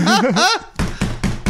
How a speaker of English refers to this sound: Are you ever walking around naked in the house and you think somebody's knocking on the door, but it's just your nuts smacking against each other?